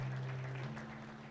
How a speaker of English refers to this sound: Praise God. Come on, let's give the Lord another big hand clap of praise. Hallelujah.